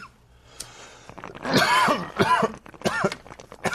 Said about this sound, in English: This is a sound man's dream, is a... putting these lav mics on and then just watch three old stoners cough their way for the next hour.